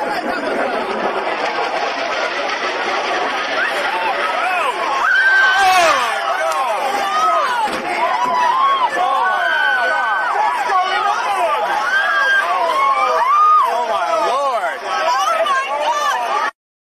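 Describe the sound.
A crowd of people gasping and crying out together, a dense, loud layer of overlapping exclamations and rising voices that runs steadily for about sixteen seconds, then cuts off abruptly.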